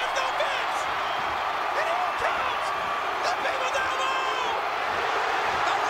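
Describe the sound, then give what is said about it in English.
A large wrestling arena crowd cheers and roars without letup for the whole stretch, a dense, steady wall of shouting voices with a few higher whistles and yells rising above it. “Look at the crowd. Look at them going just ridiculous.”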